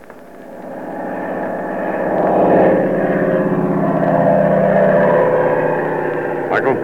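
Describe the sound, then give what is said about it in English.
A steady, droning engine of a propeller airplane flying to New York hums throughout, swelling slightly louder after the first couple of seconds and holding a constant, throbbing propeller tone until the end. “Come on, we're flying to New York.”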